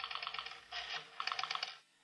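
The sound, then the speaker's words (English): Someone dials a telephone number: a run of quick, crisp clicks, a brief whirring rush, then another rapid string of clicks before it goes quiet. No one speaks. “And then Ralph dials a number on the phone.”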